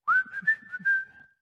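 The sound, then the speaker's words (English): A short human whistle used as a family's signal that someone is looking for one of its members: a single clear phrase that rises, then holds a steady bright pitch with small wavering inflections for about a second before fading out. “In a different kind of way, when I was a kid, we had this certain whistle that is whistled in our family.”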